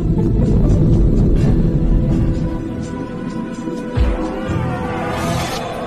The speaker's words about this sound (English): It sort of whine roars, which real sharks don't ever do. No. They don't vocalize. No, of course not.